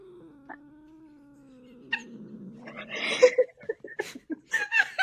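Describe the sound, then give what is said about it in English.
A female cat, mad because the speaker moved, lets out a low, drawn-out grumbling murmur like a little cat growl, not a meow, that wavers for a couple of seconds before rising into rougher, louder noises and brief chuckling sounds. “She's mad because I moved. I moved and she's mad. But what, that doesn't sound like a mad, yeah, like a, what do you call no, that?”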